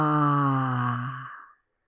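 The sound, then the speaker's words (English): A single deep exhale through the mouth, voiced as a long "haaa," steady and fairly low-pitched, lasting about a second and a half before trailing off into silence, letting out a big breath taken in through the nose as the belly falls, as a breathing exercise. “Now let the air escape through your mouth as you make the sound of ha.”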